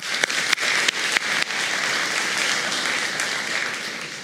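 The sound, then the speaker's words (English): A crowd claps steadily in a dense, bright wash of applause, with a few sharper individual claps standing out early before the sound settles into an even, sustained roar. “Again, round of applause.”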